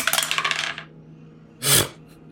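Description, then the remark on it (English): Dice rattle and clatter across a hard tabletop in a quick burst of small clicks, then a short pause and one more sharp, louder tumble, with no talking. “I want to, but will my dice let me?”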